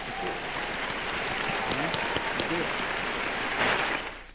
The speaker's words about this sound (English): You know, we have to go ahead and give you a clap.